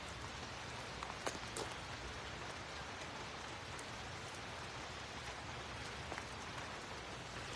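Steady rain falls on a rainy Saturday afternoon, pattering onto a hard surface, a continuous dense hiss with scattered sharper drips standing out now and then. No voices, just the even wash of rainfall.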